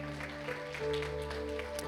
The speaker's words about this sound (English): And so can we just give her a round of applause for her ministry today?